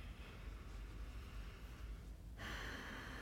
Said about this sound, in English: So breathing deeply.